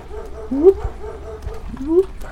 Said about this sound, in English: Okay, now, can we tell a little better of where the barking is coming from? Yes. It's coming directly from your left at this point.